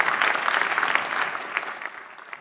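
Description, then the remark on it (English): A crowd claps together as a clap offering to Jesus, a dense, steady wash of applause, loud and continuous for a couple of seconds with no voices rising above it. “Shall we give a mighty clap offering unto Jesus?”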